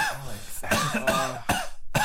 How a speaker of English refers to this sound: stop coughing. Stop coughing. Stop coughing?